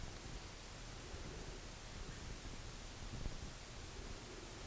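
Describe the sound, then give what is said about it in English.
Steady, even static hiss fills the whole stretch where a voice should be, with no speech coming through, as a video call connection drops out into noise while the speaker can be seen but not heard. “I can see her talking, but I can't hear her.”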